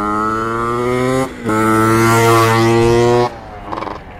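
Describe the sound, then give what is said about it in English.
A loud, buzzing motorbike engine drones in the countryside in Holland, dipping briefly as if shifting gear, then roaring on before cutting off and fading into quieter background noise. No one speaks. “Noisy motorbike.”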